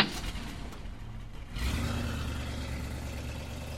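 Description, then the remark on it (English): A car engine turns over and catches partway through, then runs with a steady rumble and a slight rev, with no voices. “I can hear the car starting up.”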